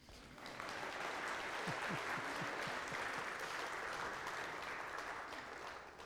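An audience breaks into sustained applause, steady dense clapping that starts abruptly and holds at an even level for several seconds, with a few faint voices mixed in.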